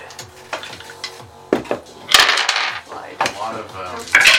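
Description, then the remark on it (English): A handful of ten six-sided dice (10d6) clatters and rattles across a hard surface in several loud bursts of overlapping clicks, with faint voices murmuring in the background. “That's a lot of dice.”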